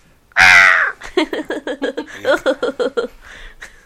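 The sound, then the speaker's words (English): A loud, harsh crow caw opens, then a rapid series of short, raspy caws or chortling calls repeats in quick rhythm, clear with no talking, heard in a library. “Did you bring a bird with you?”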